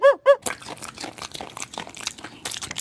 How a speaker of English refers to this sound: I would like to hear Fred Bassett, the cartoon dog, eating a giant waffle.